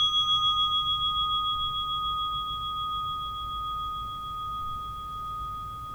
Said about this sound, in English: We will now begin the meditation. You'll hear the sound of the bell to mark the beginning and conclusion of the meditation.